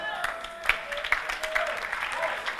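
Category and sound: crowd, audience clapping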